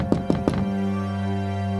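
Three quick, evenly spaced knocks on the door of a house, solid and fairly loud, followed by a steady low hum that lingers to the end with no voices.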